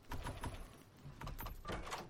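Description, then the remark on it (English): Several quick scraping, sliding thuds in a row as drawers are pulled open one after another while searching in a video game, fairly quiet, with no talking. “All right, I'm just searching through drawers here.”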